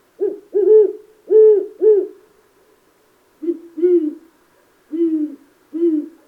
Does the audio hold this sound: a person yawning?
no